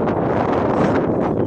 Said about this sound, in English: it's getting a bit windy here